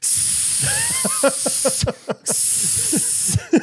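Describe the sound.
A voice imitates steam being pumped into a room with a long, loud, breathy hiss. It pauses briefly twice, with faint voiced murmurs mixed in underneath.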